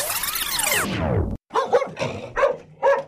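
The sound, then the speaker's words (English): A dog barks, four sharp barks in quick succession after a brief pause that follows a long, falling whine. No one speaks. “2 days later, I love this dog.”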